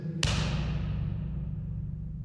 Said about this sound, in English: That was you slapping your chest very hard. It's. I hope you can hear this okay on the recording, because the echo is just remarkable.